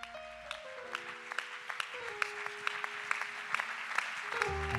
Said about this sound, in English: Let's give the man of God a hand this morning.